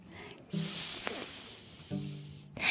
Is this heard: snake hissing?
yes